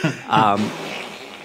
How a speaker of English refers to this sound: That was just a fart, but I feel more poo in my pot.